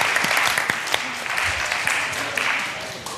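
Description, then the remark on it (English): An audience applauds a participant's decorated egg steadily for a few seconds, dense overlapping claps forming a continuous, fairly loud wash, with a few faint voices mixed in underneath. “Okay, I think he deserves a round of applause as well.”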